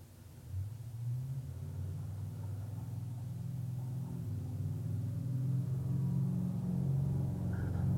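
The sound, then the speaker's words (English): A heavy truck engine rumbles steadily outside, a deep droning hum with low tonal layers that holds at an even, fairly strong level for the whole stretch, with no one talking. “And today's imperfect meditation includes truck sounds.”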